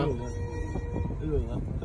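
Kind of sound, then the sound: vehicle, moving train on rails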